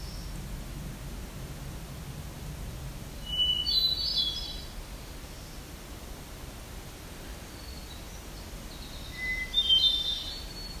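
Two short, high, buzzy songs of the black-throated green warbler and black-throated blue warbler, about six seconds apart, rise above a steady wash of hiss. Each is a brief, thin buzz, and no one speaks.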